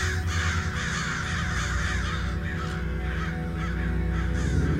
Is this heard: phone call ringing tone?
no